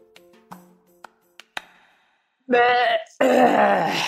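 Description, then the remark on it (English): A few light ringing pings, then a loud, strained vocal exhale in two long gurgling bursts, sounding like a burp mixed with a retch after a breath held for a long time. “Why did it sound like you were burping and throwing up at the same time?”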